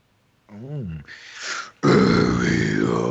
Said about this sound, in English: Dude, he has a great fucking growl. Fuck yeah, dude.